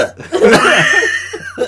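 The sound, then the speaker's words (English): A person vocally imitates a dog hacking and coughing up pliers, a short, throaty, gagging burst with harsh rasping texture, fairly loud, lasting under two seconds. “Yeah, it coughs them up.”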